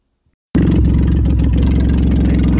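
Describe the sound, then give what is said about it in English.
A demolition derby car's engine roars to life after a brief silence, rumbling heavily with a dense, rough low-end growl as it revs, heard from inside the car while it is being driven. “But that is a Demolition Derby car.”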